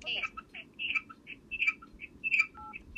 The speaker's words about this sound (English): Too much noise. That's not normally what it does. It's the thing is I'm calling myself from one phone to the other. So that's why it's doing all that echo and squeak and bleh that's going on.